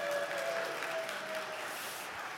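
An audience applauds steadily, a dense wash of clapping hands with a few faint whistle-like tones near the start, holding an even level before easing slightly toward the end.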